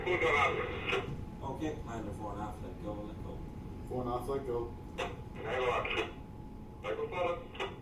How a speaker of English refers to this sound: That's just the GMSS radio there, just for safety warning.